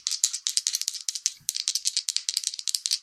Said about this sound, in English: Oh, no. I was rolling the wrong amount of dice. Oh. I was rolling a 5 total rather than just the 2 dice that I have.